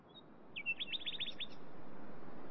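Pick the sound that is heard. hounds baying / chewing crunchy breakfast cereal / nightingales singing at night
nightingales singing at night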